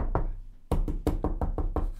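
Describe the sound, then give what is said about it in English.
Knocking on a door: one knock, a brief pause, then a quick burst of about seven firm raps, fairly loud, with no voices. “There's one knock. There's one over there.”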